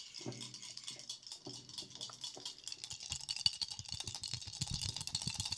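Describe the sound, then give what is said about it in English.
Dice rolled for a saving throw rattle and clatter continuously, a busy scratchy shaking that turns into a run of sharp, rapid knocks as they tumble and roll, with no talking. “Dice ASMR, friends.”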